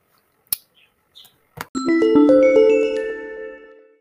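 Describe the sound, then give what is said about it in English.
A few sharp clicks, then a bell rings out to mark the next segment of a show, in a quick run of bright, overlapping struck tones that sustain and slowly fade over about two seconds. No one speaks. “So, with that bell mean, it's time for the next segment.”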